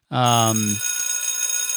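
A bell is struck once with a sharp, loud attack. Its rich, bright tone fades quickly in the lower partials, while thin high overtones keep ringing steadily.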